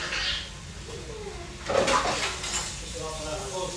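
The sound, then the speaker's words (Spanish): Dishes clink and clatter during washing up, with a sharper knock of plates in the middle, while a voice talks quietly underneath. “I have a guy coming for the dishwasher.”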